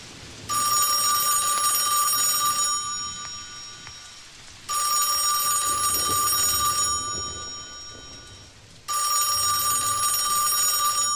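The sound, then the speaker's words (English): A telephone rings in three long, bright bursts separated by short pauses, fairly loud, with a steady hiss like rain continuing underneath. “It cuts to credits with the phone ringing.”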